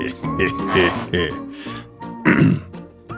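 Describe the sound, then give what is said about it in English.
A person lets out a drawn-out, gurgling belch with low, throaty rumbles and a couple of strained bursts, fairly loud, with no clear speech. “And now I'm belching, and I gotta adjust something.”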